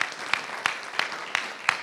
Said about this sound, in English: Well, at this point, can I acknowledge the great job our volunteers do welcoming people each week? Should we give our volunteers out there a round of applause?